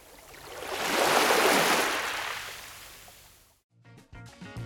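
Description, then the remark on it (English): A single ocean wave rushes in on the shore, swelling to a loud, hissing crash and then washing away; right as it fades, a voice briefly starts speaking. “submerge people in nature. Put them right there, feet in the ocean”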